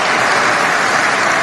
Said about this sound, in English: You hear all that applause? I'll add to that. I'll go right along with it.